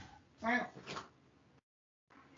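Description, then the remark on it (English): A female cat wanting to get out gives one short meow with a brief second call trailing after it, followed by quiet background noise and a moment of silence. “My cat wants to get out. She's demanding.”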